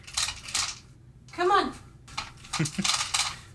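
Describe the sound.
The girls' automatic cat feeders dispense dry food in two bursts of bright, rattling clatter as kibble spills out, separated by a brief rising voice-like sound.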